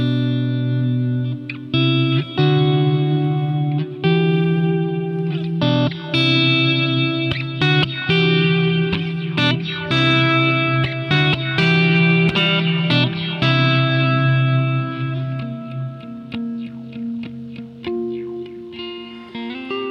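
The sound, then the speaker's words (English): An electric guitar, played through the John Mayer prototype profile from Tone Junkies into a Boss pedal that combines reverb, delay and filter, with all knobs at 12 o'clock, plays sustained chords and picked notes soaked in lush reverb and echoing delay, with a swirling filtered tone, loud and continuous with no talking. “So if you can hear, all right, so it's a reverb, a delay, and a filter built into one.”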